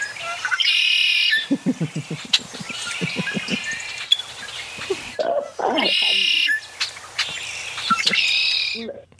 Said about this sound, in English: Well, it's mostly a blackbird, but it's got. I know it's a red winged blackbird.